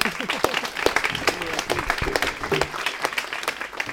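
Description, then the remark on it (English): An audience applauds steadily for several seconds to welcome a speaker, a dense patter of many hands clapping at once, with a few faint voices mixed in beneath the claps. “So let's clap”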